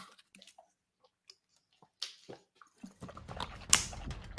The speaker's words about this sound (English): Let me get a water sip. Yeah, water break.